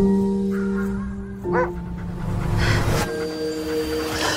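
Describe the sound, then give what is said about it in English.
A she-wolf in the Netflix film The Wolf and the Lion whimpers in high, wavering whines, then gives a couple of short, harsh barks, moderately loud over a steady low humming background. “I made a new friend recently, a she-wolf.”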